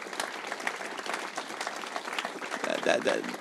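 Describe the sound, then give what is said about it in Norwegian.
A crowd applauds its group leaders steadily, many hands clapping in a dense, continuous patter at moderate volume, with a few brief voices or tones rising near the end. “Fordi at vi ønsker å hele veien, la alle de her gruppelederne, og det tenker vi det sånn at vi skal gi dem en applaus”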